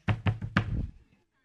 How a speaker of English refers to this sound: When your point goes wrong, you bang the pulpit.